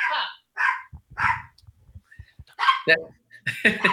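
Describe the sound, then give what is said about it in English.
A small 7-pound poodle terrier mix dog named Astro yaps after the doorbell rings, a quick series of sharp, high-pitched barks, about six or seven in all, fairly loud, with faint low thumps and murmuring in the gaps. “He's a poodle terrier mix. 7 pounds, a little 7-pound guy with a big mouth.”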